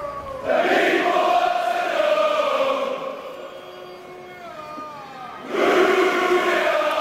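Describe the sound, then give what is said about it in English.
A large cricket test match crowd, the Barmy Army, chants in unison, a loud, sustained, tuneful roar that dips to a quieter sung stretch midway before swelling back to full volume. “It's a cricket. It's the test. It's called the Barmy Army.”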